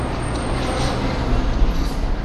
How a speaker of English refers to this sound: Sorry, there's a truck passing.